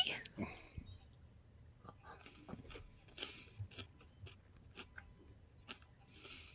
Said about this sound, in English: Who's chewing their ice cubes? Not me. Eating my popcorn.